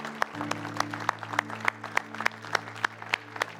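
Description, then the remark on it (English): A church audience claps in steady unison, sharp crisp claps landing on an even beat about three times a second, over a sustained low organ-like chord. “Come on, church, let's keep clapping all over this place.”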